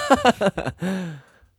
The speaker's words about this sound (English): Well, your little baby taking a yawn, got to take a little nap. I don't know why. Now who's wearing a diaper? That yawn just hit me by a total surprise.